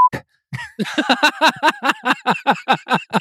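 A quick, clear censor bleep over a swear word sounds at the very start, then a short silence before a run of rhythmic, repeated vocal bursts, like someone laughing or chanting.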